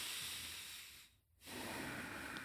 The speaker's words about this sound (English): So getting back to my breathing, that's something that I remind myself. Deep breaths through the nose.